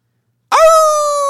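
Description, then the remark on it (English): After a short silence, a person lets out a single loud, drawn-out werewolf howl, sweeping up quickly and then holding a steady, ringing high pitch until the sound cuts off. “Give us your best werewolf howl.”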